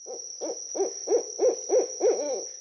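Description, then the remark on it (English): An owl gives a rapid, even series of about eight short, yelping calls that rise and fall in pitch, clear, over a faint steady high-pitched whine. “Today's Name That Sound is an owl.”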